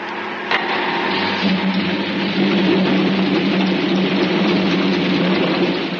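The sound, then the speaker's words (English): Machinery hums steadily as compressors start up; a droning motor tone comes in after a moment and keeps running, loud, with no voices. “Start the compressors.”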